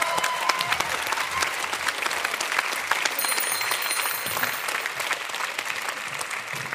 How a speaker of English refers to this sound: Oh, that was deeply enlightening. Thank you so much. Applause, yes.